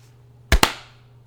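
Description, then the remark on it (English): Two sharp, loud hand claps in quick succession, a fraction of a second apart, made to sync audio tracks, ringing out briefly over a low steady hum, with no talking. “Can I get a clap sync?”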